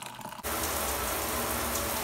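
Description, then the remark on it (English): Slightly cooled water pours steadily from a kettle to brew coffee, starting abruptly after a brief quiet moment and continuing as a full, even splashing rush, with no voices. “Time to brew a bit of coffee while I'm in the shower. Water's cooled down a little bit in the kettle now.”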